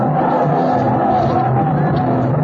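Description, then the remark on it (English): A large crowd, down on their knees before temple steps, yells and clamors together in a steady, loud, unbroken roar of many voices, with overlapping shouts rising and falling throughout. “Right down on their blooming knees and yelling their full heads off.”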